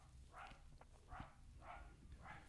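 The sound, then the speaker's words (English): A dog barks four times, the short muffled barks spaced about half a second apart over a low background rumble, with no one talking. “Fucking dog. You fucking hear that?”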